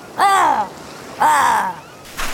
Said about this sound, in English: Well, one crow heard me. I'm sorry, Mr. Crow.